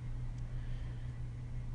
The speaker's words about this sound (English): I'm hearing the traffic quiet down. Cars, onesies and twosies here and there.